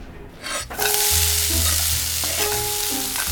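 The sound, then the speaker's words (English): A steady, loud sizzle of bacon and beer-steamed mussels cooking in a pan, with metallic scraping and stirring sounds and low rumbling clatter running through it, no voices. “What are you making? Make a little beer steamed mussels with the bacon.”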